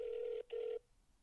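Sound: phone call ringing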